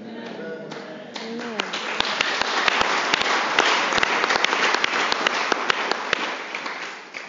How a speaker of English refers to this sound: Thank you for clapping.